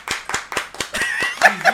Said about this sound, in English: Oh, can I clap? That was good.